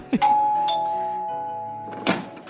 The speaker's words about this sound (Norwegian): Minn meg på å skaffe oss ringeklokke, så det ikke skjer igjen. Ja, men vi har jo ringeklokke nå.